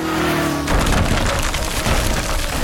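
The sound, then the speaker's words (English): A low droning hum gives way to a sudden, loud crash of a wooden crate falling and smashing apart, wood and metal splintering and clattering in a sustained burst of debris. “Robin and I covered our eyes from the explosion of wood and metal.”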